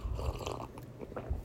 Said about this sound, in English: Hold on. I gotta take a sip of tea. Hold on.